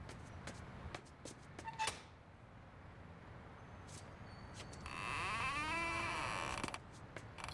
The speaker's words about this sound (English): That's the loudest door in America.